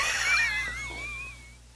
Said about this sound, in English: Can you stop breathing so loud, please?